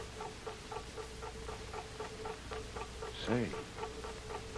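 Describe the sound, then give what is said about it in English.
A big clock ticks steadily and quickly, muffled from behind a wall of a boat's forward hold, over a constant low hum, with a brief rising-and-falling squeak near the end. “That big clock, Tuan, like I tell you.”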